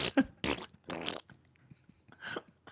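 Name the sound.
imitated fart noise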